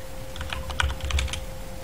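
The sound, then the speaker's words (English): Quick keyboard typing, a run of light clicky keystrokes in an irregular rhythm, then a short pause and one last sharp tap, over a steady low hum. “can you somebody type in chat Twitch app or Twitch mobile problem?”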